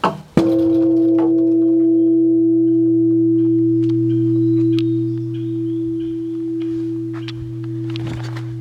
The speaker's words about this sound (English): And you can ring the bell and pray, and then there is a big giant bell where you can have this like a log with ropes, and you can pull it and ring the bell in the forest, which is completely quiet, and the sound is really nice.